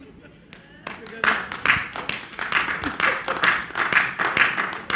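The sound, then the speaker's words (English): A few scattered claps quickly swell into steady audience applause at a talk about fathers, after a joke that men don't get pregnant, many hands clapping in a dense, crackly patter that stays fairly loud for several seconds. “I know why the rest of these men ain't clapping.”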